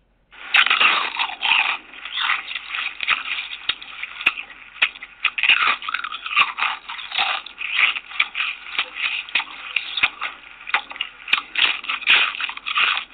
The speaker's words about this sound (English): a person crunches into a potato chip, he or she is enjoying the delicious taste of one of the world's most famous snacks